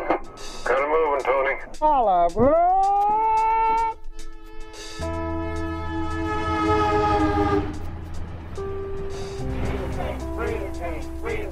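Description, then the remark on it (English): An Amtrak passenger train traveling from San Francisco to Washington, D.C., picking up marchers along the way, blows its horn in loud, sustained chord-like blasts over a low rumble of the train running, after a few brief rising, swooping tones at the start. “The Gay Freedom Train was an Amtrak train that traveled from San Francisco to Washington, D.C., picking up marchers along the way.”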